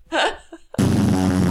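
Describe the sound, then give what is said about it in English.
A brief vocal sound, then a loud, sustained, buzzy raspberry that imitates a fart and runs to the end without a break. “What massive fart when you get down, boy?”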